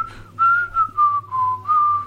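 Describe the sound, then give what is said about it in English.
A man whistles a short melody of several sustained, clear notes in close succession on a studio session recording, fairly loud, with a faint low hum underneath and no talking. “You hear him whistling.”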